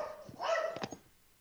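A dog lets out a short burst of barks while scuffling with another dog, a few quick yelps bunched together, not very loud, then quiet. No one speaks.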